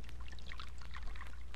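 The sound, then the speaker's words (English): Hotel coffee pours into a cup in one steady stream, a bright liquid splashing and gurgling for about a second and a half, with no voices. “I'm going to pour for you, si?”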